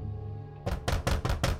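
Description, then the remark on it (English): A fist pounds heavily on a bedroom door in the early hours of the morning, five loud thuds in quick, slightly uneven succession, following a brief low hum with no voices. “She slept soundly until the early hours of the morning when she awoke to someone pounding on her bedroom door.”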